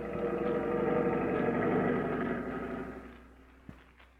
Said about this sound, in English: As the Forest Service patrol plane drops down toward Chief Cody, he realizes in the flash that here is his chance to get to the scene of the fire, though he has as yet no idea of the nature of the conflagration.